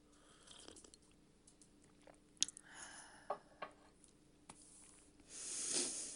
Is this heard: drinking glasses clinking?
no